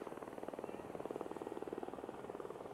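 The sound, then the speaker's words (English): A police helicopter thuds steadily overhead above a beach, its rotor chop a fast, even pulse that stays fairly loud and constant throughout, with no one speaking. “So bringing this down, and the reason I did this podcast down on the beach with the police helicopter and the waves and the sand and the beauty of the surf and everything,”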